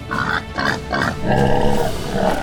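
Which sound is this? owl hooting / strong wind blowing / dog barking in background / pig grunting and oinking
pig grunting and oinking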